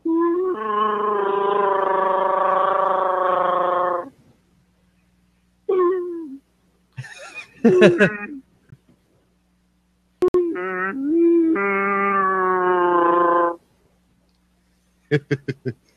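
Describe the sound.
Someone imitates a Wookiee roar in a roar contest: two long, loud, warbling growls, each several seconds, with a raspy gargling edge, separated by short grunts and sharp clicks.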